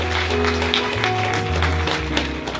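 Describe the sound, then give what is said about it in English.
An audience applauds five people steadily for a few seconds, a dense wash of clapping from many hands, with sustained keyboard or organ chords playing underneath. “We give a round of applause to those 5 people.”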